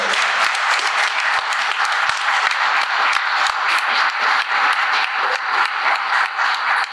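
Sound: audience applause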